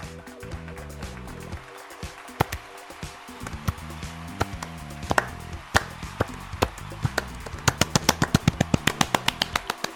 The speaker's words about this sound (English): I mean, I know it sounds like way too happy of a reaction to a game the Sixers lost. I apologize for the soft claps.